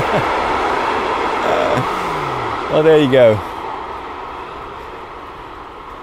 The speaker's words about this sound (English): The German train is now gone, and a quiet peace will return.